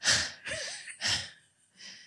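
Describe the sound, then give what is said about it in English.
A voice imitates heavy, out-of-breath panting: four quick, breathy gasps in a steady rhythm, fairly loud, with no speech. “And then we finish and we're sweaty. Out of and breath. Breathing hard.”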